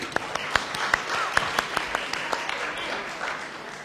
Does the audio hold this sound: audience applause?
yes